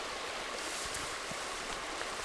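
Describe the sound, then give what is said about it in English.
Fast, shallow stream water rushes steadily, a constant bright hiss and burble with no pauses and no voices over it. “Okay, see this water? I see the water. It's going fast, but it's low.”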